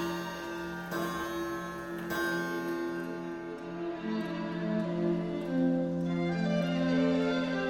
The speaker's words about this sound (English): Thank God the grandfather clock's going off to tell you to go the hell home.